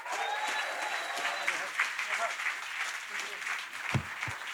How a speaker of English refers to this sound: And why don't we clap our hands and honor Pastor Jimmy?